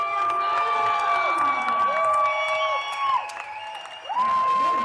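A loud, high-pitched scream from an audience member at a lip-sync show rises and falls almost nonstop over a cheering crowd, dipping briefly near the end before the shrieking starts up again.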